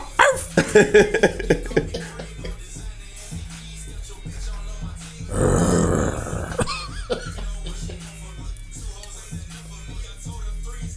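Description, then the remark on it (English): A person does a rapper impression, imitating a barking dog with a quick run of loud, rhythmic barks, followed later by a long, rough, growling rasp, with quieter background murmur throughout. “That's still barking.”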